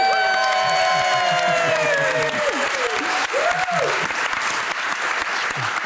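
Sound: audience applause and cheering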